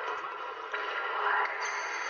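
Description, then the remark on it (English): A steady wash of radio static and hiss fills the whole stretch, with faint choppy fragments flickering through it as a ghost box sweeps across stations, scanning a random phonetic sound bank during a paranormal investigation. “which scans a random phonetic sound bank, allowing entities to produce intelligent responses to our questions.”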